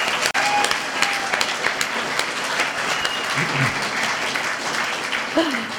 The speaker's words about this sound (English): Let's give you all a massive round of applause for coming out for the final event.